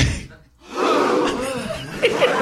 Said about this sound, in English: Could we just get a? Can we get a gasp? But it's got to be clean, no laughter. Just everyone going.